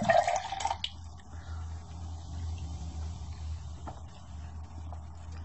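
A short, splashy pour of energy drink from a can, lasting under a second, then only a low steady hum with no voices.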